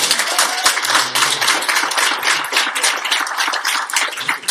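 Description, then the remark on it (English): Steady applause from an audience clapping for a teacher fills the whole stretch, a dense, bright crackle of many hands clapping at once without pause, loud and even throughout with no voices standing out. “Everybody clap for this teacher.”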